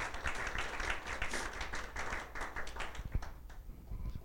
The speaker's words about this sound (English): Go ahead, we can give the Lord a round of applause.